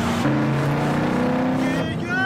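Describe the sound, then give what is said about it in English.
A car engine hums steadily and loudly while driving, its droning tone shifting slightly in pitch as it runs, with muffled voices faintly underneath. “You're gonna wreck this car. You're liable for it if you wreck it.”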